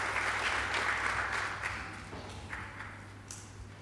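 Audience applause welcoming a speaker as he mounts the podium, a dense crackle of many hands clapping that starts strong and gradually thins out over a few seconds, with a low steady hum underneath.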